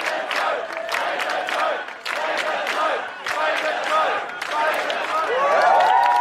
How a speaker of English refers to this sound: 3 days later, on a quiet Sunday arvo, A few thousand people gathered outside the Tote, closing down Johnson Street and Wellington Street.